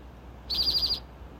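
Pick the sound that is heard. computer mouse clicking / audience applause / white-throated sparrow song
white-throated sparrow song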